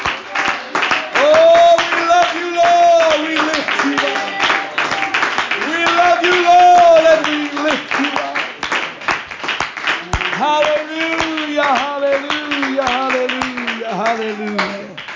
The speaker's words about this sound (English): In Jesus' name, why don't we clap our hands and worship the Lord tonight for a few moments. Hallelujah.